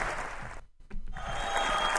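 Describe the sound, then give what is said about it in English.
A canned applause sound effect played from a soundboard: dense, steady clapping and crowd noise that briefly cuts out in the middle, then resumes at full, even loudness. “Okay, if you could stop playing the applause now, I would appreciate it. I'm still getting better at the soundboard.”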